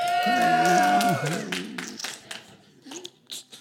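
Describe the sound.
An audience at Thorn Creek hollers and cheers loudly for about a second in support of the Kansas City Chiefs, many voices overlapping, then the noise breaks into scattered claps and a few fading shouts.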